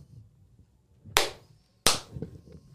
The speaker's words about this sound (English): Hey, everybody clap because we did do that. One, two. Hey, it's actually better if you do it at different times.